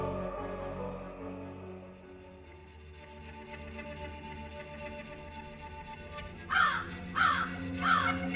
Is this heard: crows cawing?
yes